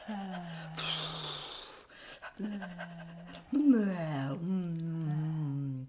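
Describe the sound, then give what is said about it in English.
A person imitates a panting dog, opening the mouth wide, with breathy huffs mixed among sustained, wavering vocal tones that rise and fall over several seconds. “And then opening up wide like a panting dog.”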